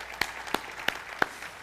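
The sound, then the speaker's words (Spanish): Applause for the people following over the internet, in a steady rhythm, five sharp, crisp claps evenly spaced about a third of a second apart, fairly soft with no voices over them. “Vamos a darle un aplauso a la gente que está por internet, amén.”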